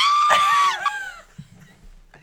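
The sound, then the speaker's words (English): A single sharp, high-pitched human scream lasting under a second, played back from a recording, loud and piercing, then trailing off into quiet low background rumble. “It was just a 1 second scream.”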